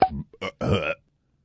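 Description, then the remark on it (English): A short burp in a few croaky, voiced bursts, the last one longest, followed by silence. “I get a little gas bubble in my chest.”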